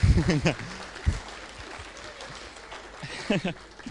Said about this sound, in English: So just kind of a round of applause for our eldership team as well.